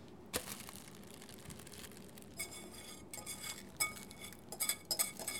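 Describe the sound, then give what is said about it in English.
Melted chocolate mixture being poured into a loaf pan lined with plastic wrap, heard as a soft steady scraping with a sharp clink at the start and a few more clinks and scrapes of a utensil against a bowl near the end. “And now I am pouring the melted chocolate mixture into the prepared loaf pan.”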